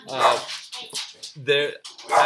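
A dog yelps and whimpers in a handful of short, whiny bursts with brief gaps between them, fairly loud, mixing high-pitched whines with sharper barking sounds.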